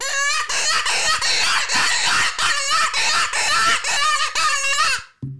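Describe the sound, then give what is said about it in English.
A newly purchased varmint call, used for calling javelina, coyotes, bobcats and lions, is blown in a rapid series of loud, high, raspy squeals, about eight wavering cries in a row with short breaks, then it stops abruptly. “And so this is the first time I'm blowing in your call, and we'll see the difference.”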